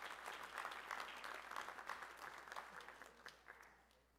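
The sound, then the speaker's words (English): A church audience at a morning worship service claps steadily for several seconds for the musicians and praise team. It is a dense patter of many hands that stays fairly even before thinning out toward the end. “Can we give these musicians and praise team a hand clap this morning?”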